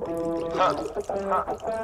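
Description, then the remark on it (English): Liquid pours into a glass, a short burbling stream with rising, ringing tones as the glass fills, lasting about two seconds. “Pour away.”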